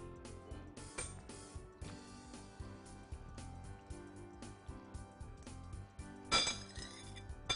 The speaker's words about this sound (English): I'm going to pour this into a pre-greased casserole dish.